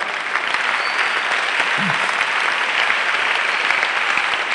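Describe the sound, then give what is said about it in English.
Sustained applause from a crowd, a dense steady wash of many hands clapping at once, even in loudness throughout with no pauses and no voices standing out. “Have you finished clapping?”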